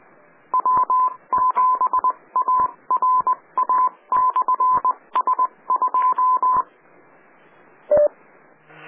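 A rapid run of DTMF touch-tone beeps dialing a 9-1-1 autopatch call, short steady tones in quick bursts over a faint hiss, then after a pause a single lower beep.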